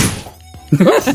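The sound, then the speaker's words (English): A single dull, short thump against a desk after a moment of near quiet, followed right away by someone talking loudly. “It was just my desk!”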